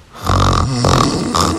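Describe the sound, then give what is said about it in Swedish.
Loud snoring with rough, rattling snorts that come in three quick surges, back to back and filling the moment with no other sounds around them. “Lever du med fruktansvärda snarkningar?”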